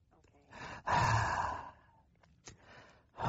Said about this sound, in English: Okay. I'm making you pant. I'm just trying to make you feel at home, you know.